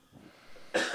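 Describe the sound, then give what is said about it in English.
A single short, dry cough bursts out near the end, fairly loud, after a moment of quiet breathy murmur. “Sorry, I had to dry cough.”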